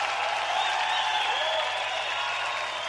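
A steady wash of applause from a crowd, dense and continuous for about three seconds with a faint layer of cheering mixed in, fairly loud and without any talking.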